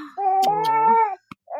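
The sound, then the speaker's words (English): A newborn baby boy, about five weeks old, whimpers in a drawn-out, wavering, fairly high-pitched cry lasting about a second, then a tiny click and a brief second whimper follow after a short pause. “You're going to hear lots of little baby sounds in this episode, guys.”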